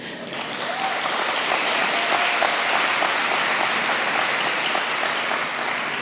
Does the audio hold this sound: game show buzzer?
no